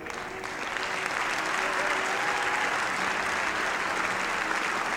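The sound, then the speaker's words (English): Sustained audience applause, a dense, steady wash of many hands clapping at an even loudness throughout, with faint murmuring of voices mixed underneath. “He received applause, and it's not hard to understand why.”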